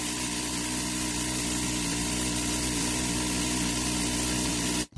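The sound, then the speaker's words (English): A 134 minigun fires at a car, cutting it in half, in one continuous, loud, buzzing roar, its rapid shots blurring into a harsh droning tone that holds steady for nearly five seconds before cutting off abruptly. No one speaks. “And that's what it sounds like when you cut a car in half.”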